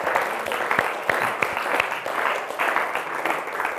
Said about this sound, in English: Let's give a clap offering to the Lord for His finished work. Thank you, Lord.